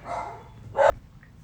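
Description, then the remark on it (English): A dog barking at the neighbors barks once, sharp, after a softer whine-like vocalization, with a faint yip trailing off at the end. “Had a brief dog break. Yeah. To, allow them to bark at the neighbors.”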